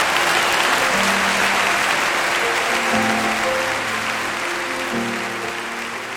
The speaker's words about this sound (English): Well, that thunderous applause will wrap up this two-part Focus on the Family broadcast featuring David Ring.